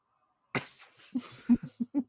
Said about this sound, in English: I dropped my rock.